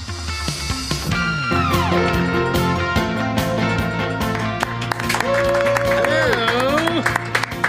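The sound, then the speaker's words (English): Steady clapping runs through a loud, busy mix of music with sliding, wavering tones and crowd voices, keeping up its sharp, rapid patter for the whole stretch. “To that clapping, ruckus.”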